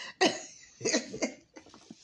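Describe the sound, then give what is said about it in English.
Several harsh coughs burst out in quick succession, followed by a softer, raspy tail of quieter coughing and breathy throat sounds. “They go out in public and then they go, and you can hear, now I'm coughing because there's no cold in my chest, but you can hear it rattle.”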